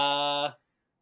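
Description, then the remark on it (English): A brief burst of homemade theme music played on a keyboard: one bright, buzzy synth chord held steadily for about half a second, then quickly fading out into silence. No voices. “I made it on a keyboard, so it took like 5 minutes.”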